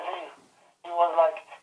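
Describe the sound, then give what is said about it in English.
A thin, tinny voice of a caller over a telephone line speaks briefly, drops out to near silence for a moment, then comes back, muffled. “we're losing you. Come closer to the phone.”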